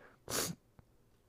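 One quick, airy slurp of cold coffee, a loud breathy hiss lasting about a quarter second, followed by a soft single click, with no talking.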